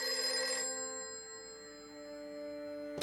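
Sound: telephone ringing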